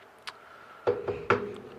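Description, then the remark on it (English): A servant knocks on a wooden door at the end of a long hall in the corner of a manor house: three knocks, a firm rap, a pause, then one more solid thud, each with a low hollow ring, preceded by a faint click over a quiet steady hum. “He then leads up to the stairs in the manor, heads down a long hall and knocks on a door in the corner of the house.”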